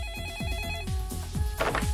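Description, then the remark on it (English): A telephone at a TV station rings as a call comes through to a security guard, a steady electronic trill with bright tones repeating in quick pulses over a low rhythmic hum, with no one speaking. “He calls the TV station and gets one of the security guards who has no idea what's going on”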